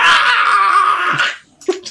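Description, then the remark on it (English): A man lets out a loud, sustained scream for just over a second as he falls into a river of grease, cut off abruptly and followed by a couple of brief, muffled gurgling sounds. “He screams. Go ahead and scream.”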